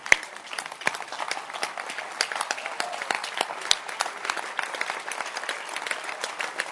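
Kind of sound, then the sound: crowd, audience clapping hands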